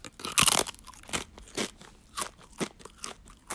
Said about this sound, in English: Okay. Had about 40% more crunch than I thought it was going to.